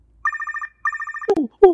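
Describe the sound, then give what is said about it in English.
A telephone rings twice in quick electronic trills, each a rapid burst of pulsing tones, followed by a sharp click as the line picks up and a brief voice. “All right, let's get into another phone call.”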